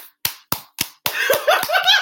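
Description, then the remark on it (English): Sharp, close hand claps land in a steady beat, four alone at first, then a couple more continue under overlapping voices. “Hey, y'all clapping it out.”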